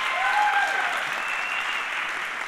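An audience at Renew Life Church applauds steadily to welcome first-time guests, a dense wash of clapping that stays fairly even in loudness for the whole stretch, with a few faint whistle-like tones rising above it early on.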